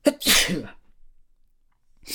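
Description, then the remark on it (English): A single loud sneeze with a sharp intake and a bright, explosive burst, followed by near silence and a faint breathy sound at the very end. “That sneeze. I hate that.”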